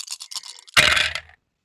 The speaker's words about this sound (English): we wanted that dice sound as we were recording. So we made some adjustments